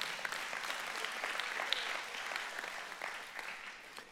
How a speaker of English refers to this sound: If you believe that today, give the Lord a hand clap.